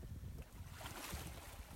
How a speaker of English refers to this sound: Listen to the sounds around you. Can you hear the waves? Can you hear any other children playing in the sand?